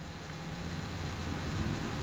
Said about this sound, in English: What? Why? It's so loud. Why do they need to be so loud? They're always... Why can't it be like a chill motorcycle?